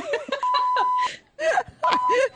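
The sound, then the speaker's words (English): A steady, high electronic beep, set off when the wrong button was accidentally pressed, sounds for over half a second, then a second shorter beep follows, both running under excited talking and laughter. “I hit the wrong button and it accidentally beeped.”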